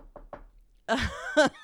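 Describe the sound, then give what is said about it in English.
Two quick, light knocks on wood, close together and fairly soft, followed by a louder burst of voice-like sound after a short pause. “I mean, it would have to like totally tank and knock wood. Hold on.”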